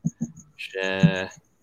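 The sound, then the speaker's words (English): A cricket chirps steadily in the background, a thin, high, evenly spaced pulse running through the whole moment, while a voice briefly speaks and hums over it. “I can hear a cricket somewhere.”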